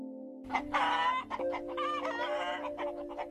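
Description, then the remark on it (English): Several hens cluck busily in a quick, overlapping chatter as they peck at corn scattered on the ground, with a steady low hum running underneath throughout. “He saw fat, happy pigs rolling in the mud, and hens clucking and pecking at corn scattered on the ground.”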